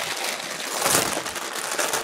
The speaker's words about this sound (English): I'm going to open this post on my mic to hear the rustling.